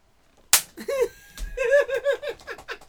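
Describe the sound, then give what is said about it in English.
One sharp, loud hand slap from a high five rings out, followed right away by bursts of laughter and lively vocal reactions. “That was a high five, not a slap in the face.”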